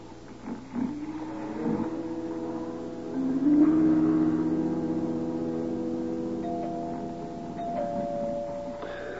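A doorbell at a front door rings at four o'clock, on and on as a steady, droning tone, its pitch holding for several seconds and shifting slightly partway through, over a low background rumble. No one speaks.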